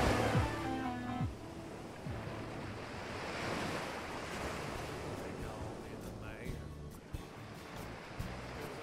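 Ocean waves roll and wash in a steady, broad roar, with wind gusting across the microphone and a few brief tonal whines near the start.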